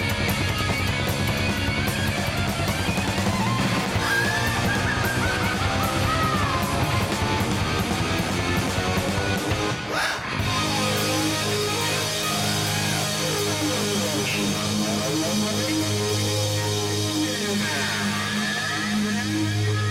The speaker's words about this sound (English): And the big rock ending for … from ….